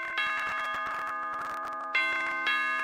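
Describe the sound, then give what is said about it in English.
A doorbell chime rings out, bright bell-like tones struck three times in quick succession and left ringing, fairly loud with no voices. “Cancer doesn't ring the doorbell when it shows up.”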